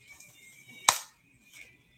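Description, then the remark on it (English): A coach gives a single sharp, crisp hand clap during a training drill, against a faint background hum, followed by a much softer, brief tap about half a second later. No one speaks. “If this drops before my second clap, you owe me push-ups.”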